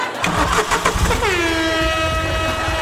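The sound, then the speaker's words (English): A car engine cranks with a few sharp popping backfire bursts, then catches and revs up into a loud, steady rising whine, with no voices. “Make it so backfiring cars sound like ….”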